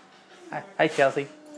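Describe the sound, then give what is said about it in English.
A dog lets out a quick series of short, high, whiny whimpers, three or four eager bursts in a row, wanting to play with a balloon. “And the dog wants to play with it.”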